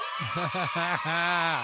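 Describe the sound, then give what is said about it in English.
A brief burst of high young children's voices cheering, starting with a few bouncy giggling whoops and stretching into a long, drawn-out celebratory shout. “See, I knew I'd get a cheer out of you.”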